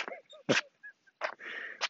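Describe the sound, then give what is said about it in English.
A dog, Katie, makes soft, quiet sounds: a few short breathy snorts or sneezes mixed with faint, brief whimpering whines, spread unevenly over a couple of seconds. “Katie's a real nice dog there.”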